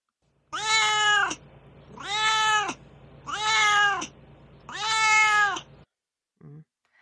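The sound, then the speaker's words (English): A cat named Duarte meows four times in a row, long drawn-out cries at an even pace, loud, followed by a brief faint sound at the end. “And so now it's time for Duarte's Corner, where my cat Duarte will share his stories about the book.”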